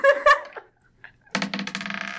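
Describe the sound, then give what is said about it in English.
A brief vocal outburst, then a pause, and dice clatter and rattle across a hard table surface in a quick rolling burst that continues, fairly loud, until the end; the dice are rolled for an intelligence check. “Roll an intelligence check.”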